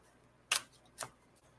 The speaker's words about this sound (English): And I'm not a good card reader, and I'm not a good shuffler, as you can see. And these are brand new, and they're sliding all over the place.